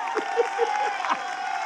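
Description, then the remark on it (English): A crowd claps and cheers together, giving the Lord a hand clap, a dense wash of applause with a few voices shouting over it, fairly loud and sustained. “Come on, people, give the Lord a hand clap.”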